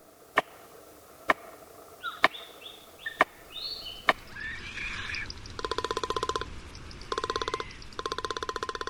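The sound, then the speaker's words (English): A palm cockatoo bangs a stick held in its beak against a tree: five sharp, hollow knocks at a slow, steady beat, with short whistled bird notes between them, then a run of buzzy, rapid rattling pulses. “A tree banged with a stick held in a beak, palm cockatoo.”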